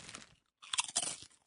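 Loud crunching of a crisp, pickle-flavored snack: a first bite, a short pause, then a burst of chewing crunches with bright, crackly texture and no talking.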